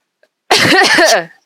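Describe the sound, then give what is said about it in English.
A single loud cough with a raspy, throat-clearing edge as someone tries to clear their throat. It lasts under a second and stands alone in otherwise quiet surroundings. “I went to clear my throat and all I did was cough.”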